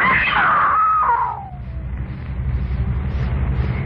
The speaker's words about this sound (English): Yeah, I screamed. What good was that?